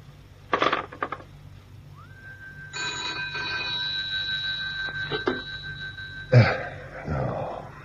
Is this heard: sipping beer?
no